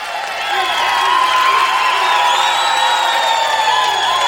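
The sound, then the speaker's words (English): A crowd breaks into sustained applause and cheering, loud and steady for several seconds, with scattered whoops and shouts rising above the clapping. “Ladies and gentlemen, let's have a round of applause.”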